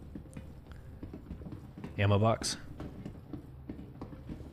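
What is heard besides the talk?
video game footsteps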